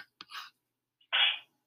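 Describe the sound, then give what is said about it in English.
A single sneeze: a quick breathy intake, a brief pause, then a loud, hissy, explosive burst that cuts off sharply. No talking accompanies it. “That was a mean ass sneeze”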